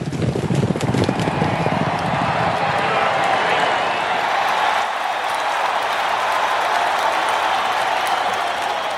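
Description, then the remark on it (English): Galloping hooves pound beneath a loud, steady roar of a cheering crowd, like the start of a horse race; the drumming of hooves is strongest at first and then blends into the crowd noise. “The hosts are saddled up, the prizes are ready, and the holiday voicemails are loaded in the gate. And they're off.”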